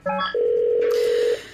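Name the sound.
telephone keypad dialing tones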